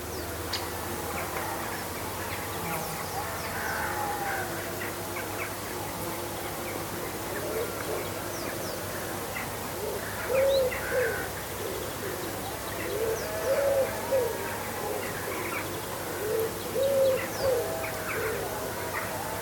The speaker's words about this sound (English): Jackdaws and pigeons and collared doves join the even song of the dusk chorus. And the sheep, who have had a hot day of it, call to each other in the welcome cool.